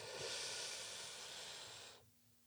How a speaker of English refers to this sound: No, you know what? You're not breathing deeply. Breathing deeply is a different experience. If you really breathe deeply, breathe slowly in.